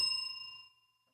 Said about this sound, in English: first of all, you don't ding the bell when you're supposed to ding the bell. And number two, I was working on it.